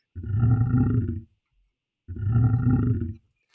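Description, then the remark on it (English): A lion, Leo, roars twice, loud, each deep, rumbling roar lasting about a second with a short silent pause between them. “Please don't eat me, Leo the lion.”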